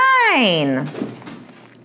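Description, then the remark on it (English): Scout, an agitated dog, lets out a single loud, drawn-out bark that slides downward in pitch over about a second, then trails off into faint background noise. “My dog's flipping out.”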